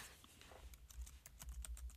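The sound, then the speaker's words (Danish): Rapid typing and key clicks on a computer keyboard, a run of sharp taps at an uneven rhythm over about two seconds, with no voices. “Taste. Det skal jeg fortælle dig. Ja. Jeg skal lige klikke.”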